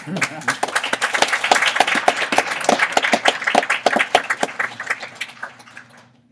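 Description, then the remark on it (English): An audience breaks into applause during a church service: many hands clapping in a dense, steady patter that thins out and fades away over the last second or so. “I also have a complicated relationship with clapping during service.”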